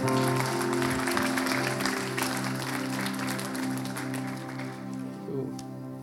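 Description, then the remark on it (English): Steady applause from a crowd for the band, a dense wash of clapping that holds for several seconds and then slowly tapers. A sustained musical chord hums underneath the whole time. “Before you take your seats, please give a huge round of applause to the band.”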